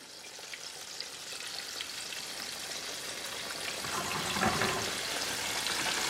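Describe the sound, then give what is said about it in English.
Chicken frying in hot oil, a steady dense crackle and sizzle that holds throughout and swells slightly louder toward the end, with no voices. “Those are frying chicken.”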